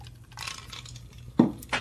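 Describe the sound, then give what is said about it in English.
Glasses clink together in a toast, a sharp tap followed by a second lighter clink, after some soft rustling and handling noise. “Shout out to everybody sipping. Cheers.”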